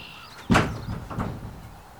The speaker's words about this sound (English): I heard something bumping against the front door, and before I thought, I called out, "Who's that?"